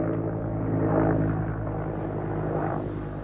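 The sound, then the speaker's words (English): A steady, low engine drone of a propeller aircraft passing overhead, with a humming, layered tone that swells slightly then eases off, heard on its own with no voices. “If there's a plane or a helicopter, it'll be on a Sunday.”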